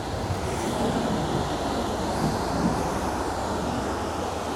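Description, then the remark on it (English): A steady rumble of a passenger train rolling along tracks right beside the Pacific Ocean in San Diego County, with dense low roar and a washing hiss that stays at an even loudness throughout, no voices. “The train track comes really close to the Pacific Ocean here.”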